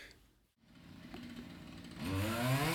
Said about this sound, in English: I'm pretty sure there's a health and safety consequence for using a chainsaw in a concrete car park.